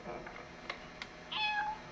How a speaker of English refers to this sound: Where did we get a cat?